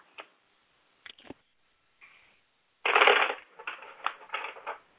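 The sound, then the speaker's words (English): Tarot cards being shuffled during a reading: a few sharp isolated flicks and taps, then a loud crackling riffle followed by several shorter papery bursts, with no voices. “I want you to focus on your question while I'm shuffling the cards and asking Spirit for the answers, okay?”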